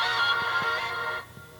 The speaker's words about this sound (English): I turned on your phone again? Yeah. We did this yesterday. You did that all day yesterday. Had your phone going off.